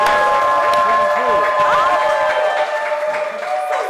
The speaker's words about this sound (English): Okay, before we get into that, can we give these lovely ladies a round of applause in the audience? Round of applause.